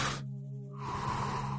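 An audible breath during a guided breathing exercise: a sharp airy intake, a brief hummed pause, then a long steady exhale, with no talking.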